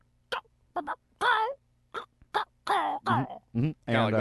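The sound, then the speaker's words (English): A person imitates a chicken: a run of about eight short, clipped clucks that build into longer, warbling squawks, voiced fairly loud with brief gaps between. “One of the chickens sounded like this.”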